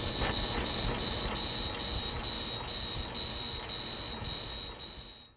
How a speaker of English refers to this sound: The sound you just heard was a xenon lamp on a fluorometer that we use to measure chlorophyll A on our Prochlorococcus cultures.